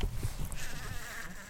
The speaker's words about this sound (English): one of the bees is in the bottom of this little pot with a kind of grid at the bottom with some of its legs poking out, which I think means he's now ready to take the tarsi clipping.